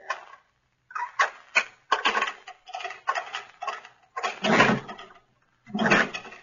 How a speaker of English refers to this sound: and get my key and unlock the door.